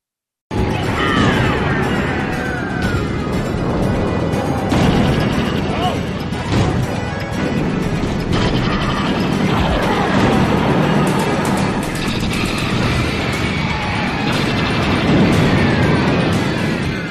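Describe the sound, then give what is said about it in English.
Loud, chaotic battle noise from the video game Twisted Metal, a demolition derby with guns: repeated explosions and booms with missiles whooshing off, layered into a dense, nonstop wall of action sound that holds for the whole stretch, with Frère Jacques playing. “Lots of explosions, missiles being fired off.”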